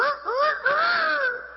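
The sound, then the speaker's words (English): A rooster crows once, a long strained call that rises, wavers and trails off over about a second and a half, loud and alone with no voices. “And He will bring a cock-a-doodle-doo to you and to me to help us because He wants to warn you.”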